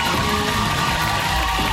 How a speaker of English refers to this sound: Then he proved it. Stripping down to a traditional Hawaiian loincloth. The 6'4", 234-pound star put on quite the show, suitable only for late-night TV. And the crowd went wild.